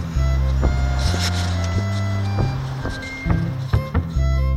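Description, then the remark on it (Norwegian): Steady low engine rumble of traffic outside a shopping centre by the highway, Riksvei 111, with vehicles droning past and a few sharp clanks and knocks scattered throughout; no one speaks. “Nå utenfor Bøkmannsenteret, oppe riksveien, og skal handle litt, se hvordan det her inne.”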